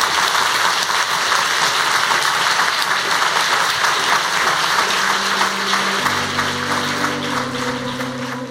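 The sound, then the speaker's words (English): An audience at the House of Literature in Oslo claps for Dame Antonia after an evening talk, a steady, dense, even wash of applause that holds for the whole stretch, while low sustained musical tones fade in beneath it partway through. “And I think we should applaud Antonia.”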